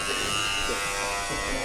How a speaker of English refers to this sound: Should I ring the bell? Push it.